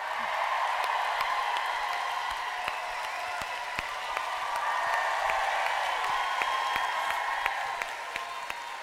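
A live-show audience applauds steadily for nearly nine seconds to welcome the host's mother, a dense wash of overlapping claps with a few sharper individual claps standing out, easing off slightly near the end.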